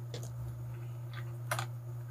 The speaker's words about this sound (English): No, I bought D&D dice or die, and I'm playing with them.